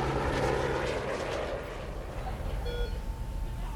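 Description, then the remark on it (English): A helicopter carrying a young boy powers away, homeward bound, with a loud, steady engine roar and a dense rumbling drone that fades slightly over a few seconds, with no voices. “Instead, he leaves the Federales to make their way home in their Jeep, and he scoops Christian into the helicopter and powers away, homeward bound.”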